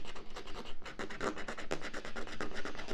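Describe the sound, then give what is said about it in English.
Rapid, rhythmic scratching of a coin against a lottery ticket, a steady run of dry, gritty strokes that holds fairly loud for the whole stretch with no voices over it. “You know, you can also, I could do all three of these and just scratch the bottom off.”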